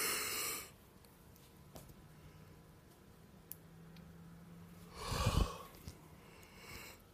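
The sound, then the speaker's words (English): A person yawns, with a breathy rush of air at the start and a longer, louder drawn-out exhale near the end, quiet in between. No one speaks. “You know what yawning is? It's trying to get more oxygen to your brain so you can stay awake and more alert.”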